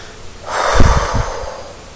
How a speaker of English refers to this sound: And again, breathing in through the nose, into the chest, the belly, and exhale through the mouth loudly.